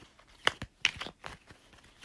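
Playing cards being shuffled for a fortune-telling card reading: a quiet run of crisp, papery flicks and snaps in an uneven rhythm, with a few sharper bursts standing out. No one speaks.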